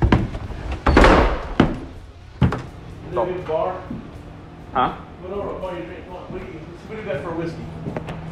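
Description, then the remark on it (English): A heavy, nondescript door off an alley, unlocked with a key fob and leading to a speakeasy bar, creaks open and thuds shut with a few solid knocks, followed by people talking quietly as the latch settles. “We walked through an alley, and he tapped a key fob on a nondescript door.”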